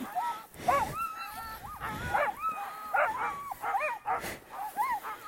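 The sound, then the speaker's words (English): Several sled dogs bark and whine eagerly together, a chorus of overlapping yips, howls and whimpers, continuous and excited throughout. “Dogs are ready for more.”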